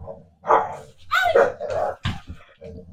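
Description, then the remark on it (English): A dog barks and yips in several quick, excited bursts while playing and going after someone's foot, mixed with playful growly vocalizations over about three seconds. “No barking at the foot.”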